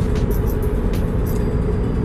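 A steady, dense rumble of road noise from inside a moving car, low and constant throughout, with faint brief ticks and hisses above it and no one talking.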